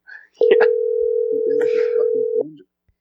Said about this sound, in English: How long is this phone ringing for voicemail?